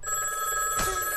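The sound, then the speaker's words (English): A big old rotary telephone bell rings steadily, a continuous bright metallic jangle with a brief rattly surge partway through, heard alone without any talking. “I just called him on my big rotary phone.”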